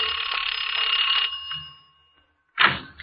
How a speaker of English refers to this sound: I got to Mrs. Blake's door and rang the bell.